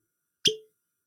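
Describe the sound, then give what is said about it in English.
A single sharp, hollow pop made with the mouth, imitating a cork being pulled, fairly loud with a short ringing tail, surrounded by silence. “Oh yeah, one last cork pop.”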